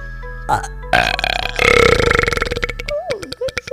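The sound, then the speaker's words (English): A long, loud, rumbling burp drawn out for a couple of seconds, harsh, trailing off into a brief voiced sound at the end. “You're not the only one with belching skills, even though you'd like to think that's the case.”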